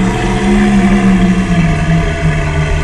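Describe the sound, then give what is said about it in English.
A loud, sustained low roar of a dragon turtle, a deep droning growl with steady rumbling undertones that holds for about three seconds with no speech over it. “You hear a roar.”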